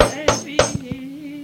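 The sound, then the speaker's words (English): Dishes clatter as they're washed: four sharp clinks and knocks of crockery in quick succession, one ringing on with a metallic tone, with no voices. “is washing dishes now”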